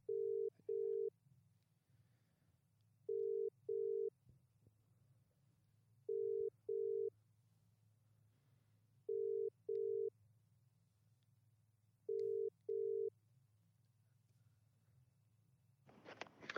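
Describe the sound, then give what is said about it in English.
An outgoing phone call to Marnie's Transport, its ringing tone a steady double burr repeated five times about every three seconds over a low hum, with no voices, before a short burst of noise at the very end. “Get the phone out and let's ring a number and let's just see.”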